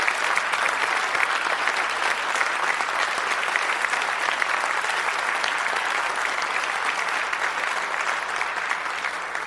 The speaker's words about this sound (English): if we have any veterans here, anyone who has served in any of the armed forces, could you just stand up for a moment? We'd love to recognize you. Let's give applause to them.